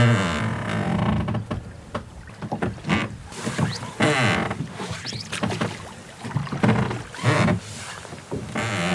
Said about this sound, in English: So we're heading swiftly down the lock now. And to the sound of a willow warbler. And the creak of the oars.